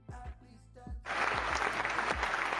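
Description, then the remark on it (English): A few dull low thumps, then a sudden burst of dense clapping from a crowd that swells and holds steady and loud until the end. “Applause for that.”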